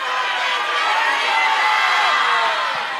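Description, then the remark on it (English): A large audience in Philadelphia, on a count of four, yells their full names including middle names all at once, a dense wall of overlapping voices for about three seconds at steady loudness, individual words lost in the roar. “On the count of four, upwards, yell your full including middle name.”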